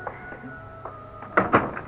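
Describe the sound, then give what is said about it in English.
A door opens with two quick clunks of the handle or latch, over a faint steady background hum. “Let me get the door.”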